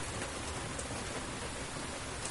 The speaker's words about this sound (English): I'm enjoying the hell out of this rainstorm with you.